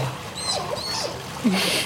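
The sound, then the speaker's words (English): A baby sea otter at the Monterey Bay Aquarium lets out a few thin, high-pitched squeaky cries over a bed of watery trickling and splashing, with a brief lower chirp near the end. “That is a sea otter, a baby sea otter, actually, at the Monterey Bay Aquarium.”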